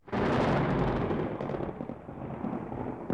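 A heavy, rumbling roar of thunder bursts in and holds steady and loud, a dense low crackling rumble with no voices, its brighter edge fading slightly toward the end.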